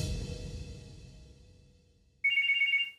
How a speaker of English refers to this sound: Then, a phone call Noelle and Kevin didn't expect. It's Iovine.